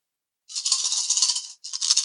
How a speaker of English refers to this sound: Oh yeah, nice. That's a lot of dice. 8d6 worth of fire.